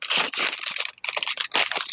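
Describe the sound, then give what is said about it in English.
A sheet of paper is crumpled up loudly, with dense crackling and crinkling bursts that come in uneven waves, pausing briefly midway before starting again. “It's real loud. It's a piece of paper.”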